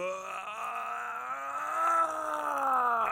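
A possessed girl in The Exorcist screams on an audio recording that Father Karras listens to alone: one long, unbroken, guttural cry that swells slightly louder and rises in pitch partway through, sounding strained and groan-like, with no other voices.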